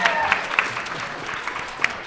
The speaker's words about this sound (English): And then thank you to the audience for being here. Yeah, give you all a round of applause.